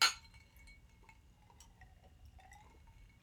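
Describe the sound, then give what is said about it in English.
A sharp glassy clink rings out at the start as glasses are raised in a toast, followed by faint tinkling of ice shifting in the glasses over a low background rumble, with no one talking. “You can hear that ice.”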